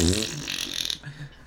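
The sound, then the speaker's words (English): A squeezed Fart Buddy toy lets out a single loud, buzzing fart noise lasting about a second, followed by a quieter sputtering tail. “So every time you hear Renee Young say Women's Evolution, squeeze your fart buddy and drown her out with a big...”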